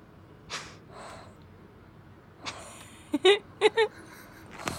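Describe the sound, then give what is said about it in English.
A pet breathes heavily through its mouth, with a few soft, breathy huffs followed by a quick cluster of sharper, snorting puffs against a quiet background. “A lot of very calculated breathing.”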